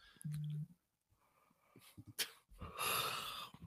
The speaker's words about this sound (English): Got that yawn out of me.